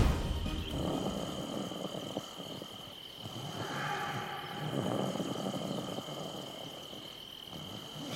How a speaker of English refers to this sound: Jeez. Ugh. He snores worse than Dad. Why does everyone snore when they get old?